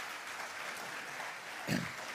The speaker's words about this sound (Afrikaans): Kerkfamilie, kan ek vra met 'n lekker hande klap. Kom ons verwelkom ons aanlyn gehoor.